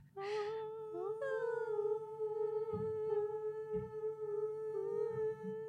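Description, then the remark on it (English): A voice imitates a high, wailing howl heard coming from inside a building, holding one long sustained tone with a slight upward slide near the start, loud for several seconds with faint thumps beneath. “That was a really weird wail from inside the building.”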